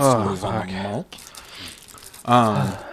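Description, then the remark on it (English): A man talks, then a loud, crackly rustle of a Devil Square wrapper being crinkled fills about a second before the talking picks up again. “God, is that rapper fucking loud?”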